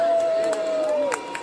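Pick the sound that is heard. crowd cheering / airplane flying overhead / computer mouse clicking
crowd cheering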